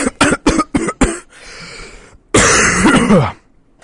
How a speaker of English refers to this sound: You know, it's good to know that with virus fears, you're coughing directly into the microphone. I couldn't help it.